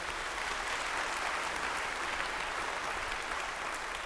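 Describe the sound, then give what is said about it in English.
A church audience applauds steadily for several seconds, the dense clapping at an even, moderate level from start to finish with no voices breaking through. “Could we clap for that?”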